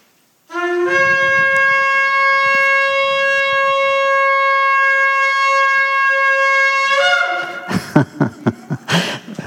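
A kol shofar blown on a ram's horn shofar on request: a single long, steady blast with a buzzy, harmonic-rich tone holds for about six and a half seconds, then breaks off into a quick run of short, rough blasts.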